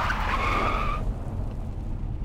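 A car's tires screech in a sharp, high skid for about a second as it swerves around a sharp corner, over a heavy, steady engine rumble, then the squeal cuts off and the low roar continues.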